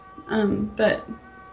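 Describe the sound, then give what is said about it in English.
Two drawn-out cat meows in quick succession, fairly loud, the first longer with a sliding pitch, the second shorter, with no talking around them. “First off, has your cat been here before? No, it'll be his first time. He's kind of reluctant.”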